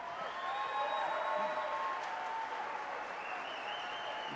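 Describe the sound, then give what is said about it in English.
A crowd applauds steadily for several seconds, a dense wash of clapping at a fairly even level with faint whistle-like tones threaded through it and no talking. “Gotta let the applause.”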